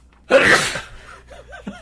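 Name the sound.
human sneeze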